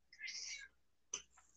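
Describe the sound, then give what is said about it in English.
A cat meows twice, heard over a phone, a drawn-out high meow followed after a short pause by a second, sharper one. Both are fairly quiet, with no talking. “Meow. Meow. Yes, we're very aware that you're there.”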